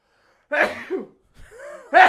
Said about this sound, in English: Bless you, man. I'm just so allergic to bullshit.